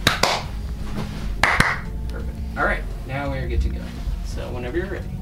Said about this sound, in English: Actually, if you would each clap once, one after the other.